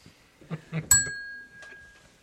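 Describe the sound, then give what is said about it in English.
A single bell is struck once, giving a sharp, bright ding that rings on and slowly fades, with people talking just before and after it. “You may have a point for ringing may, the bell.”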